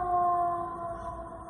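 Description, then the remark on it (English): An ambulance siren holds a steady, sustained wailing tone, heard alone with no one speaking, its pitch barely shifting across the short stretch. “How did your body respond to the sound of the ambulance?”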